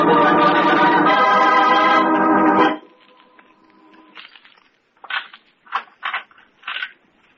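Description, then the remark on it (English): A loud, harsh electric crackling buzz with a droning hum runs for nearly three seconds and cuts off abruptly as the power lights for an execution are tested. A faint hum lingers, followed by several short, sharp sputtering bursts. “excuse me, boys, I've got to test the power lights for the execution.”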